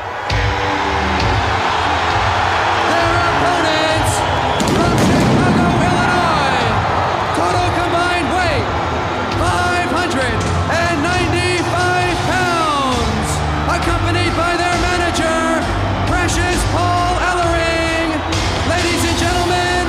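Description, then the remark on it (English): A huge arena crowd in Philadelphia roars and cheers without letup as the Road Warriors come out at a wrestling event for their match against the Skyscrapers, with shrill whoops and yells rising above a dense wall of voices, loud and sustained throughout. “One of the things I like so much about this event is, so you get the Road Warriors taking on the Skyscrapers, and the crowd reaction to the Road Warriors when they come out is unbelievable on the show.”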